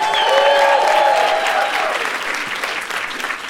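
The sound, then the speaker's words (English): A crowd applauds loudly and steadily, with a few cheers or whoops rising over the clapping at first, then the ovation thins slightly toward the end. “The applause isn't competitive here.”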